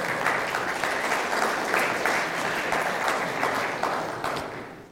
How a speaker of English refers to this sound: So well done to everyone involved. I think that deserves a round of applause.